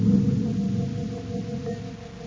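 Spaceship airlocks locking together by magnetic coupler as the Terra 5 is joined to the cruiser: a steady, droning electronic hum of layered low tones that holds fairly even in loudness for a couple of seconds, with no voices.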